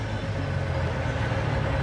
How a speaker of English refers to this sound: And another rented trash truck.